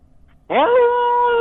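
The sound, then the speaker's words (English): After a brief silence, a person lets out a loud imitation of a wolf howl: one sustained, voiced note that swoops upward and then holds steady until the end. “Can you give us a howl?”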